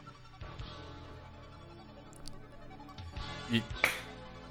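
Two sharp hand claps in quick succession near the end, crisp and fairly loud, over a low steady background murmur.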